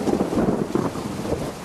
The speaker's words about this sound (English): God, the weather's. It's almost like we're doing something for the Halloween special. Sure, but there's rain and everything.